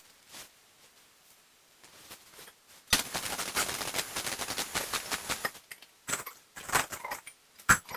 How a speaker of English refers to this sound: Money sounds like heavy pieces of gold falling on top of each other. The cash register purrs.